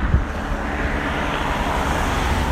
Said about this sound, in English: It's not a... looks like it's a private helicopter. In the minute, it's hovering over a highway. Maybe they're just trying to avoid the storm clouds or something.